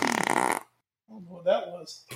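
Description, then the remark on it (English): A low, croaky burp rumbles for under a second, with brief bursts of voice just before and after it. “You burped at the beginning.”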